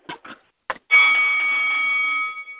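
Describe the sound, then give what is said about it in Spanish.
A few quick metallic clanks, then a single loud ding of a round-start bell that rings on with a bright, steady tone for over a second before fading. “El sonido de la campana para adelante.”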